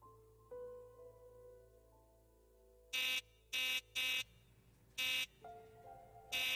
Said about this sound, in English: hear the sound of your buzzer. Buzzer for your apartment.